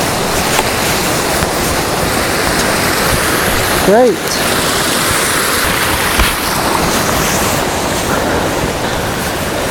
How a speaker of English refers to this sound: Yeah, the river's in the background, there's loads of trees, so it's a bit distracting